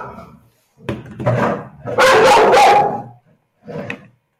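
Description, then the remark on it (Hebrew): A female dog having a big tantrum barks loudly in three uneven bursts, the middle one longest and most forceful, with short pauses between; no one speaks. “הכלבה של סתיו חטפה טנטרום בגדול, אז עכשיו הוא הלך בנובדי טיבי עם נביחות”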